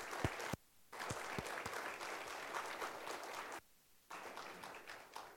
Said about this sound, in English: I think it would be good if we just paused a moment and give a round of applause once more for those who put this together and work with these kids this week to show them Jesus. Let's just express our appreciation.